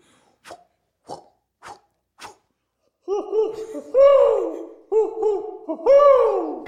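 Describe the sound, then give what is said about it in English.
A few quick taps, then a person voices a string of loud owl hoots, each hoot wavering and sliding downward in pitch, repeated several times in a playful rhythm. “Yeah, you're supposed to be an owl or something.”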